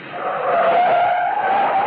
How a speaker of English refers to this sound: Like the night I came staggering out of Pier No Place, a joint on Sunset Strip, the car jock gunned my old sports car up to the curb.